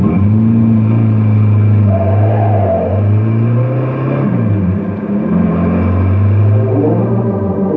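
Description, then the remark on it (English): A car engine revs loudly and climbs in pitch as the vehicle accelerates, heading for Canyon City, a steady rumble that dips briefly before surging again as it pulls away. “Jump in and we'll be on our way. All right. But I wish you'd keep this crate down to driving speed for a change.”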